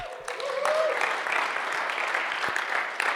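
A church audience applauds a mother of a two-day-old baby in a steady, dense wash of clapping that holds at an even level for several seconds, with a brief rising whistle-like tone near the start.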